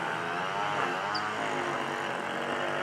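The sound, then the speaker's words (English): A lawnmower engine runs steadily, a continuous loud buzzing drone with rough harmonic layers and no pauses, with no voices over it. “And now the lawnmower just started.”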